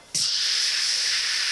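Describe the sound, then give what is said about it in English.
A sudden, steady burst of loud steam hissing starts abruptly from the undercarriage of a rock-filled cart on a track after a lever is pulled, and holds at an even, bright, high-pitched rush with no pauses, no voices alongside it. “And some steam starts to pour out the undercarriage of it.”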